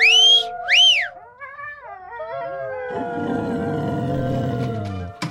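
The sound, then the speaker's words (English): Two sharp, rising-and-falling whistles call away a pack of wolves, followed by long, wavering wolf howls that swell into a dense, overlapping chorus of several wolves before cutting off. “Whatever, just lose the wolves.”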